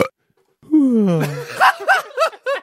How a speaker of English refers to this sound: could I please hear a burp and a yawn?